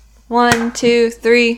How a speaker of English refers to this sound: Clap, I'll set the timer. Wait. No. Okay. When you clap, I'll set the timer. Ready?